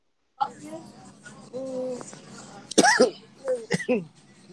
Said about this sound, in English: Well, don't be acting like you got COVID and coughing. Like, you know we live, so you can't be out here just coughing like that, my friend. I hope you feel better.